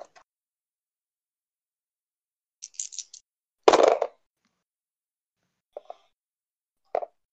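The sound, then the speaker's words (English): Three eight-sided dice clatter onto a table in scattered bursts: a quick rattle of small clicks, then a louder tumbling burst, followed by a few sparse ticks. No one speaks. “And do another D20 plus 10. Crit. Awesome. Roll 3D8 plus 10.”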